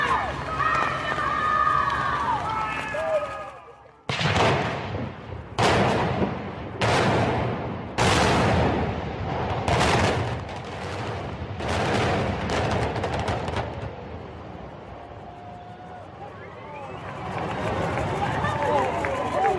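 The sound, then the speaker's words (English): A rapid series of about seven booming demolition charges goes off in sequence as a building on Carling Avenue in Ottawa is imploded, loud and sharp, followed by a low rumble as a crowd gathered around at a distance murmurs and cheers. “So this is a building that was imploded on Carling Avenue.”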